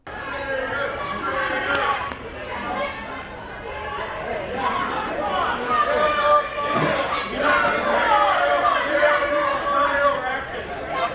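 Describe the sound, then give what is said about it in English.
A crowd surrounding Lindsey Graham shouts and heckles him, calling him traitor, with many raised voices overlapping into a loud, continuous din for the whole stretch, with occasional sharp thumps under the yelling. “So everybody listening, there's a crowd of people around Lindsey. They're calling him traitor.”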